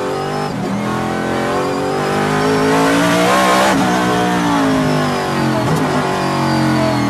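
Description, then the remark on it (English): A Cadillac race car engine roars loudly and steadily on a track, its harmonics sweeping upward as it accelerates, then briefly dipping around a gear change before climbing again. No voices are heard. “See what look at that Cadillac.”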